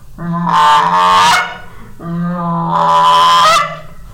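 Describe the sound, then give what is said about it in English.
A goose call is blown twice, loud: each time a drawn-out, buzzy moan that breaks upward into a sharp, higher cluck, with a short pause between. No one speaks. “And you can do like a moan then a cluck like this.”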